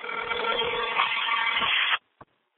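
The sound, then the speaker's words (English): A single ring tone from a call placed on a Verizon work phone sounds through its small, tinny speakerphone for about two seconds, then cuts off abruptly, followed by a faint click. “I'll put them on speaker. The phone works. And we'll see how it goes. I hope you guys can hear this. It's ringing.”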